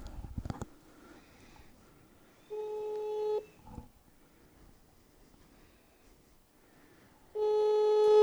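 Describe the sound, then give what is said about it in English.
A phone ringback tone for an international call to Mexico sounds in two long, steady buzzing bursts separated by several seconds of quiet line noise, with a few soft clicks at the start and no voices. “Ooh, even the ringtone's acting a little different.”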